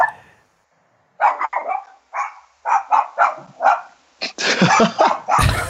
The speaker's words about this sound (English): As you can hear, some dog is freaking out that I'm walking by. Oh my god.